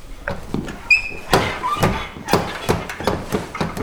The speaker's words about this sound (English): And then she walks out the swinging door of the kitchen.